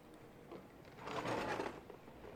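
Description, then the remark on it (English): Rummaging in a kitchen drawer for a small spatula to scoop muffin mixture: a second or so of muffled clattering and rattling of utensils, fairly quiet, with no one speaking. “What are you doing now in the drawers? I'm getting a little tiny spatula to scoop the mixture into the muffin things.”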